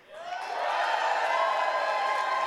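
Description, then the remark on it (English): An audience erupts into loud cheering and shouting, swelling quickly and holding steady at full volume, with many voices overlapping and no individual speech. “By cheering, I need to know if you want the youthy version or the adulty.”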